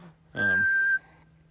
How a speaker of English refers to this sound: Heard a whistle of some sort.